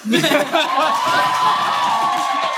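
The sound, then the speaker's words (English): An audience erupts in applause and cheering to vote for the winner, first for Winky, in a Wizarding World The Bachelor game, with whoops and a long, rising high-pitched whistle cutting through the steady, loud clapping and crowd noise. “Oh, we don't even need to do this, but to get audience participation, because I promised it, we're going to do a round of applause for who won.”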